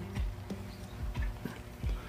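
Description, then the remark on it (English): Loud, rhythmic flapping of the wings of thousands of birds congregating near a factory, a series of soft thumping beats with a fluttering rustle between them, steady, with no voices. “Because what bird has a loud flapping noise like that? A lot of them together.”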